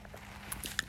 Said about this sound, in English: Sorry about that. That was my first sip of the day.